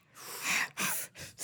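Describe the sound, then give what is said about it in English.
Heavy, breathy huffs pushed right into a microphone, four loud airy breaths in quick succession with short pauses between, hissy, with no talking. “I thought about like breathing heavily into the mic, just like.”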